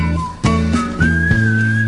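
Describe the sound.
A thin, slightly off-key whistled melody glides upward over a loud backing track with steady rhythmic chords and thumping beats, clear.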